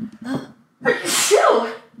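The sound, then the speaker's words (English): A single loud sneeze: a short sharp intake of breath, a brief pause, then an explosive burst of noisy air that fades into a voiced tail. “I feel like that sneeze has been sitting within me for like literal weeks.”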